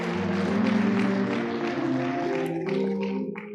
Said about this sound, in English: Come on, give the Lord a hand clap of praise for me one more time, if you would.